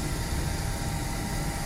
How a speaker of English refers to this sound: So it's the display says it's heating up, preparing to print Kindle Paperwhite. So I'll get a picture of the display there. The microphone will probably pick up the sound of the printer now.